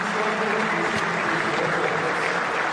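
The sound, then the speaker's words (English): Steady crowd applause at a cricket match against Australia as batsman Imam Al-Haq reaches a hard-fought 50 after 285 minutes at the crease, a dense continuous wash of clapping that holds an even level throughout with no voices standing out. “He's been out there for 285 minutes and he deserves the applause.”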